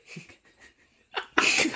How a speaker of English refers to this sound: A man two seats behind you coughs very loudly.